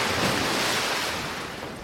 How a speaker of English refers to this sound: But then, a splashing sound.